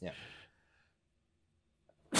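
A single short, explosive sneeze bursts out at the start and trails off in under half a second, followed by quiet until another loud sound begins right at the end.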